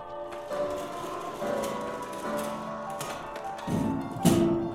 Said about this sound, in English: I manage to pry open the doors, and a wall of chemical barrels stare back at me.